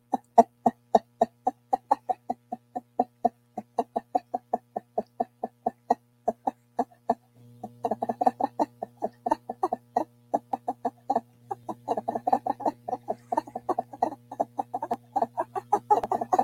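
A chicken clucks in a steady, rapid series of short, close clucks that speed up into a denser, busier run toward the end, with a low hum underneath and no talking.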